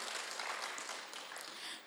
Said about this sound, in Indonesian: Hari Minggu adalah hari kemenangan kita. Berikan sorak-sorai yang paling meriah buat raja di atas segala raja.